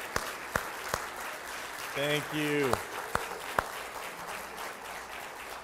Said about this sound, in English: So if you are retired or you're active military or you're first responders, police, if you would stand up, I would just love to give you a hand of applause. Thank you so much.